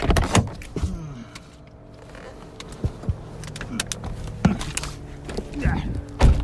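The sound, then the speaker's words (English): Someone climbs out of a car: a few sharp clunks and thumps of the door and handles, with rustling, a low engine-like hum underneath and a voice faintly in the background. “Okay, I'm just getting out of the car here.”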